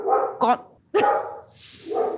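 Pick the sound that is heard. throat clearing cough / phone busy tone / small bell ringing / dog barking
dog barking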